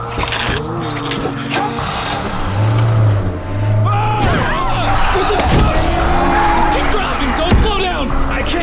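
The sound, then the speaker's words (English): A van engine revs and accelerates, its low droning growl swelling loud, while agitated voices shout over it and a sharp knock or bang cuts through. “Get in the van! Drive!”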